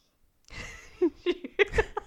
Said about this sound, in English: He's breathing in the microphone. Nasal blockage. Sorry about that.